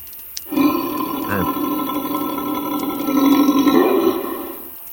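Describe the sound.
A human voice imitates a bear's growl: one long, low, rumbling roar lasting about four seconds, swelling louder toward the end before it fades out. No words are spoken.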